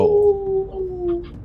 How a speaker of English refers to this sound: You hear a howling sound.